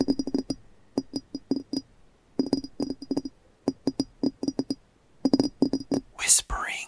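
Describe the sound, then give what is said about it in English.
Crisp ASMR-style tapping in quick bursts of rapid taps with short pauses between, each tap clicking with a slight glassy ring, ending in a brief breathy rustle. “So from tapping.”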